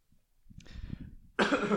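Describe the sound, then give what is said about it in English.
A low throaty rumble builds for about a second, then breaks into one loud, harsh cough from a person not yet over being sick, with no talking around it. “It's just that, this cough like sprung up today and it'll be gone.”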